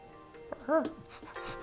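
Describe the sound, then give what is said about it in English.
A voice imitates a small puppy's bark: one short, high, yappy woof with a quick upward-then-falling pitch, fairly loud, amid faint background noise. “See? It's a puppy! Woof, woof, woof, woof.”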